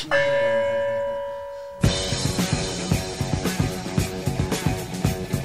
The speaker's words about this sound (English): Hit that gong. Oh, yeah, the Joe gong. Not the bong, the gong.